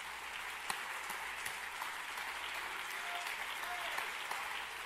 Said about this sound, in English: Can we clap our hands to the Lord one more time?